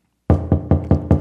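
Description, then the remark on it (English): Five quick, evenly spaced knocks on a door in the ZBS Media radio drama Jack Flanders in the White Castle, loud, each with a solid wooden thud, and no voices present. “Door's open.”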